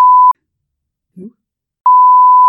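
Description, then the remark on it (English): A loud, steady censor bleep sounds twice, each a flat electronic tone cutting over speech. Between them comes a short pause with a brief, muffled voice fragment. “how am I going to say this without beep their name out? We're doing beeps.”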